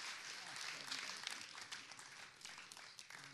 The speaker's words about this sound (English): So one more time, give him a big round of applause and a bless you. We love you.